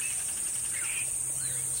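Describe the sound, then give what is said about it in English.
Short, scattered bird calls of a yellow-breasted chat and white-winged doves at Patagonia Lake State Park on the birding trail in Arizona, a little after 8 in the morning with the temperature well over 80 degrees, rise over a constant high insect drone and a low steady hum, with no voices. “Predominant calls are yellow-breasted chat and white-winged doves.”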